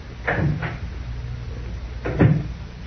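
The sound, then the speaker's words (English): A big, heavy oak door inside a tower, closing off an entrance, opening or closing, with two short, thuddy bursts of creak and knock about two seconds apart over a low background hum, and no voices. “That big oak door there closes off the entrance to the sever.”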